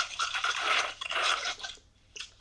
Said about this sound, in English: I gotta put the food up. He put the phone in the fridge.